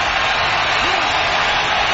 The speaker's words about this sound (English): It'll be third down and 10 now. Crowd is vocal, and out of the shotgun, he'll be singing.